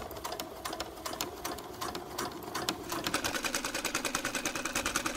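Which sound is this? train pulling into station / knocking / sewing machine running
sewing machine running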